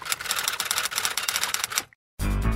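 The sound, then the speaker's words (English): Rapid typewriter clatter, a dense run of sharp key strikes for nearly two seconds, then a brief silence before a loud, full-bodied burst of sound cuts in. “Play the typewriter sound effect.”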